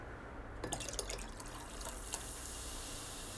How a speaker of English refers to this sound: Once you've successfully mixed your cherries and your vodka, you are going to want to add some cola to your pomegranate juice. Preferably this will be in the glass that you will be serving it in.